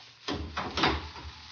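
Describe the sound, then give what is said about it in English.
The heavy wooden great door of a great hall swings shut, a few dull knocks and scrapes over about a second ending in a muffled thud, with a low rumble beneath and no voices. “Sir Lionel, would you close, please, the great door when you leave us?”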